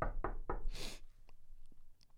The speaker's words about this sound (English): All of a sudden, so I look around. Get another knock on the door.